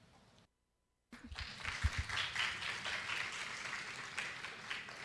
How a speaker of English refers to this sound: Let us all welcome again Gangadhar Shastri, Professor Gangadhar Shastri, with a great round of applause.